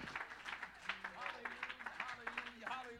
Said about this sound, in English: Oh, somebody clap your hands.